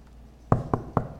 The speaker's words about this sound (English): If they got a knock on the door, and a lawyer was at the door, and they opened the door, and there's a lawyer, says, I want to tell you something.